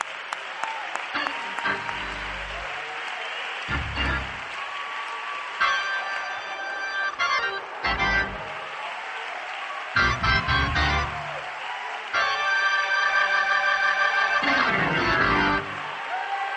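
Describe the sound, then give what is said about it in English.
An audience claps steadily for about sixteen seconds, a dense, loud wash of applause swelling in several bursts, with scattered raised voices and tonal shouts mixed in. “Clap your hands one more time before you see.”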